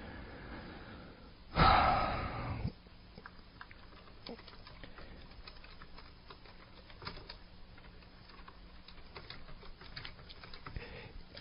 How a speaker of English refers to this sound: I'm typing an email to someone who I used her and her husband as an example in last year.